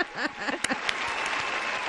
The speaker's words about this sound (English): Whoa, wait, you deserve an applause.